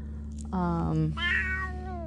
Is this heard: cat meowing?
yes